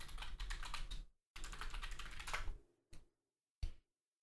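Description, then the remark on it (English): Rapid clattering of computer keyboard keys in two quick bursts, followed by two single sharp keystrokes after short pauses, with no talking, as a Google search for Cracker Barrel chicken tenders is typed. “I'm just going to Google what Cracker Barrel chicken tenders look like.”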